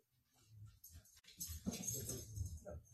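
Faint puppy whimpering comes through a quiet, slightly muffled background, with soft whines and small yelps rising and falling over a few seconds, as if from a little way off.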